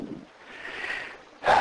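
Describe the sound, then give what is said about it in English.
Heavy breathing picked up right at the microphone: a long, airy, hissing inhale followed by a sudden loud, rough exhale. No one speaks. “I'm breathing hard this morning for some reason.”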